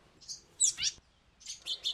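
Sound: tufted titmouse calling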